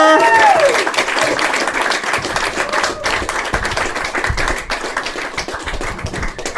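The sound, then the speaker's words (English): A crowd claps steadily, a dense, sustained round of applause that stays loud throughout, with a brief whistle-like tone near the start. “Let's get a big round of applause going”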